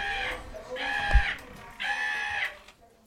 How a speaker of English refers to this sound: Oh, it's a crow. You'd think they'd turn off the crow. No. It's just on.